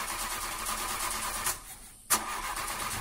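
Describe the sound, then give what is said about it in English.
A sound effect of a car engine running steadily, then sputtering and stalling into near silence, before a sharp jolt brings it back to life. It is fairly loud, with no one talking, and there is no real car in the studio. “That's a sound effect of a car engine Sorry, stalling.”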